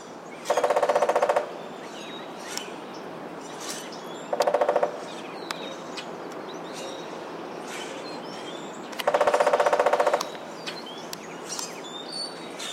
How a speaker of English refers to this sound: woodpeckers land up on a house on a weather vane or something metal that's nice and hollow and makes a big ring